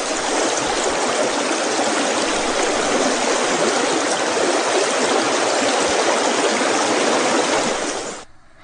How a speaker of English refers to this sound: And then a little creek, a babbling brook.